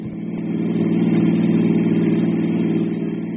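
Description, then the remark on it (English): A car engine rumbles steadily as the vehicle drives along the road to the small town of Midvale, swelling slightly at the start and then holding a continuous, fairly loud mid-pitched drone throughout, with no voices. “5 minutes later, Ritchie and I were in my car on the road to the little nearby town of Midvale.”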